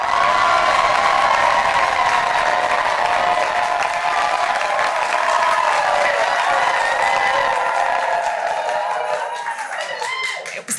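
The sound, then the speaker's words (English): A large crowd cheers and applauds loudly and steadily, a dense wash of clapping and shouting that holds for several seconds before thinning out and fading toward the end. The crowd is cheering to vote for one of several displayed visions. “Okay, so if you would like this vision to my right, please cheer now.”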